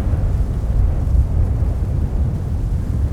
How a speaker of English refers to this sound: It's August 2022. Yet another volcanic eruption is happening in Fagradalsfjall, not far from the Icelandic capital, Reykjavik.